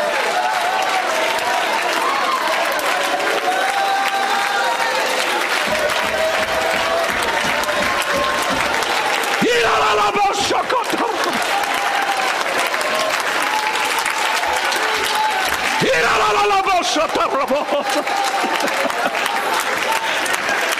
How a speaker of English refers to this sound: Good God, we got to take a moment right now and praise him. You ought to lift up your voice and clap your hands unto God.